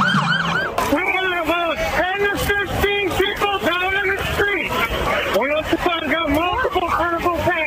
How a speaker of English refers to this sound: Meanwhile, the band played on, unaware of the carnage unfolding a block ahead of them. Then police cars came flashing by.